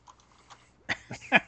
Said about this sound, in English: Or just slam on their keyboard like a chimp, and all of a sudden they've broken into some and never once Area 51.